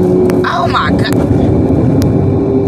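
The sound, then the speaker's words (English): A car roars by at close range, its loud, dense rumble filling the whole moment, with a few sharp clicks and a brief murmur of voices mixed in. “This car just fucking, oh my god, this car just scared the shit out of me.”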